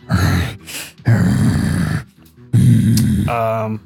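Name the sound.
voice imitating a growl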